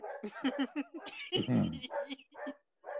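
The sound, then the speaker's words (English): A dog barks and yips in a quick series of short barks, then lets out a louder, rougher bark before a few more yelps trail off. “Bro, who's dog, bro?”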